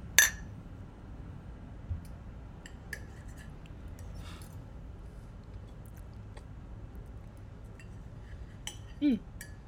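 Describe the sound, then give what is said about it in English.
A single bright clink of glasses tapped together in a toast rings out at the start, then quiet background with faint scattered taps and a soft scrape near the end. “Cheers.”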